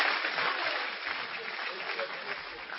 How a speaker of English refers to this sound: Clap for yourself. Applaudissez pour vous-même.